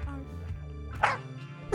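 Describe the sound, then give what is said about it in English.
A person gives a single low, mournful imitation of a dog's bark, moderately loud, preceded by a soft droning vocal sound. “So anyway, so because that's sad, I should make a little somber bark.”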